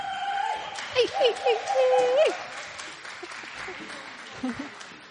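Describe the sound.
An audience applauds in a steady wash of clapping, with high voices calling and whooping over it early on before the clapping tapers off toward the end.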